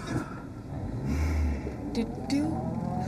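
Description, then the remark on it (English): A new car's engine rumbles and revs, its low drone swelling as the vehicle drives, with brief higher whines cutting through the steady motor noise. “God, my new car.”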